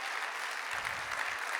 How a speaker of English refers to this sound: Would you just clap hands one more time while you're seated?